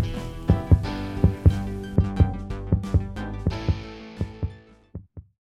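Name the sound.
heartbeat sound effect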